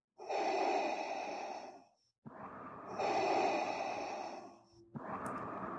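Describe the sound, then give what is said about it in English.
A voice imitates loud, heavy breathing, with two long rasping breaths separated by a brief pause, then a third starting, no words spoken. “You know, and we're just going to leave the breathing, the heavy breathing is just going to keep going the whole podcast.”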